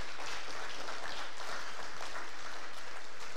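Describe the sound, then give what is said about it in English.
A crowd claps steadily for a few seconds after a prayer, a dense, even wash of many hands with no pauses and no voices on top. “I think that you got to applaud that.”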